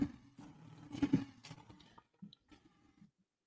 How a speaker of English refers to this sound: Josh Reynolds, let's give Josh Reynolds a Lions roar.